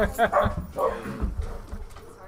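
Dogs bark in a few short bursts, mixed with higher whining whimpers, over a faint background noise.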